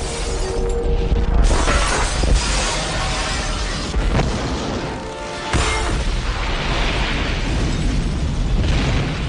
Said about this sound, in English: I could watch that like multiple times over, and the sound effect it makes as it ripples across, and then the glass shatters and explodes.